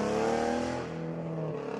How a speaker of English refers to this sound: That's a car.